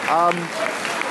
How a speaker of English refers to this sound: The players applauding the crowd.